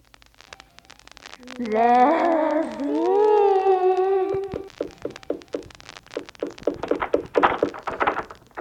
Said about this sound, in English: They're trying to get in the front door.